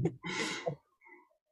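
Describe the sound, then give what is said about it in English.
A female dog snores loudly: a short snort, then one long, rough, rasping breath that trails off into a fainter wheezy exhale. No one speaks. “I don't know if you guys can hear my dog. She's snoring so loud.”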